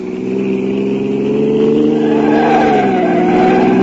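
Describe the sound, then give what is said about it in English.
A car engine roars loudly as it speeds and takes a corner on two wheels, its pitch climbing and shifting, with a thin tire squeal over the steady motor noise. “We took a corner on two wheels.”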